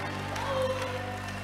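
An audience shouts and cheers in a dense, steady wash of many voices, with a low sustained hum beneath and a brief rising tone cutting through midway.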